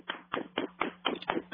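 Seven or so dull, thudding slaps land in a steady rhythm, each a broad muffled hit with a hollow low body: a person applauding by slapping their own chest.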